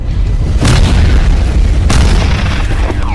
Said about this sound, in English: Boom goes the dynamite.